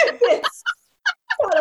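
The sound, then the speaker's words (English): A Leghorn rooster named Bree crows loudly, its harsh call breaking into choppy bursts with short silent gaps between, then rising again at the end. No one is talking. “Well, you know, then with Leghorns, they're one of the loudest of all the rooster breeds.”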